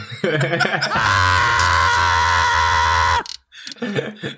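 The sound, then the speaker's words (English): A voice lets out a loud, strained scream held steady for about two seconds, imitating the Star Fox character Slippy's Dragon Ball Z-style power-up cry as he turns into Super Slippy, with brief laughing vocal sounds just before and after. “Will Slippy ever stop screaming? Will our eardrums ever recover?”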